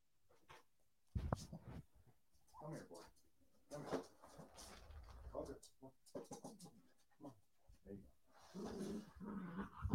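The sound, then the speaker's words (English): Dogs that got into a studio shuffle and whimper, with intermittent panting, soft growls and scrabbling movement sounds, while a person's voice murmurs in and out. “Sorry, my dogs are here. They got into the studio.”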